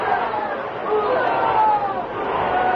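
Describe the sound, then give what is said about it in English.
A large, excited bullfight crowd roars and screams continuously, rising to its feet as the matador handles his muleta, a dense, loud wall of overlapping voices that stays steady for the whole stretch with no single speaker standing out. “He handled his muleta in a way that brought the enthusiastic crowd screaming to its feet.”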